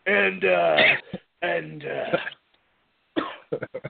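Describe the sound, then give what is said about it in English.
Someone coughs and clears their throat in a few strained, rasping bursts, then finishes with a quick series of short, sharp coughs after a brief pause. “I'm going to get better at that, so I don't have to, like, cough every time.”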